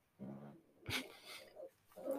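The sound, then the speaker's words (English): A dog snores in a few rough, snuffling breaths, with a sharper snort in the middle; quiet and uneven, with no talking. “Sorry, can you hear the dog snoring again?”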